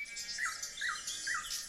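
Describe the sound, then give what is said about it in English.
A nightingale sings on its own: three matching sweeping whistled notes repeat at an even pace, with bright, trilling chatter layered above them. It sounds fairly quiet. “all know that Berlin is one of the best cities in the world to hear nightingales singing.”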